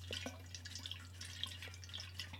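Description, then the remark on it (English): A water bottle is picked up and drunk from, heard as quiet scattered clicks and small liquid trickles over a steady low electrical hum, with no talking. “I need to actually grab my water bottle.”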